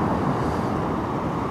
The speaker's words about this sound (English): I'm making this video version in stereo out here at the beach. A little shot of the beach, or the ocean rather.